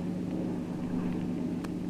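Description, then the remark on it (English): A motorboat engine drones steadily at full speed, a loud, continuous low rumble with a throbbing hum and no voices, as the boat heads out into the harbor after other boats. “Full speed ahead.”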